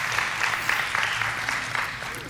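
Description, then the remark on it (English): A crowd claps steadily and continuously, a dense patter of many hands at moderate loudness, with no voices standing out, applauding a helper who brought the speaker's water up. “Give him a round of applause there.”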